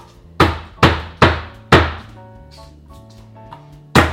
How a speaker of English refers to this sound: And then we'll just mince up the garlic. Give it a nice bang so the skin just removes.